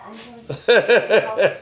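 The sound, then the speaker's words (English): A female dog barks four times in quick succession, loud, with a steady bouncing rhythm after a brief yelp-like sound; no one speaks over it. “See, I'm so happy when she leaves, the dog.”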